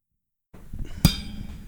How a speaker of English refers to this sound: See, that's what I'm talking about, that clink. Did you hear it?